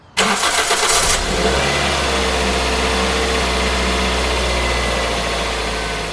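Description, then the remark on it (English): A car engine cranks for about a second with a harsh starter whir, then catches and keeps running with a steady, low rumble, as a dog is taken by car to the vet. No one speaks. “I'm a nervous person, and I didn't want to risk anything, so I scooped her up and got her into the car to take her to the vet.”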